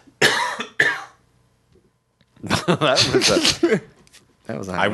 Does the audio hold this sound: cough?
yes